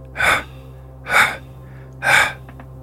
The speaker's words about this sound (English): Another crunch, followed by the sound of heavy breathing.